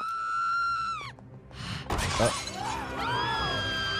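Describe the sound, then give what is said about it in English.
A woman smashes window glass in one loud, sharp crash near the middle, breaking into a brief scatter of jagged shards, with high, wavering bleat-like calls sounding before and after. “Why is she smashing windows?”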